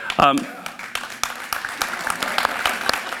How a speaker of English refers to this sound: One claps, we all clap.